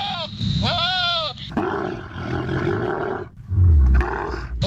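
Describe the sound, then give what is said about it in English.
A goat lets out two quavering, wavering bleats, then a loud, rough roar of a big animal takes over and rumbles on to the end. “The poor goat. Save the goat.”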